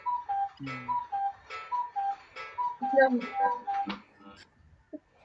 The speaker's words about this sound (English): And there's a lovely cuckoo clock from within lockdown. I was just thinking, did you pick that up? Oh, yeah. We're going to keep the cuckoo clock on radio.